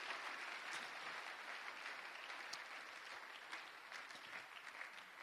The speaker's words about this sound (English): Clapping is free. It's free. You don't pay anything.